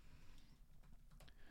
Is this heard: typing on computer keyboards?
yes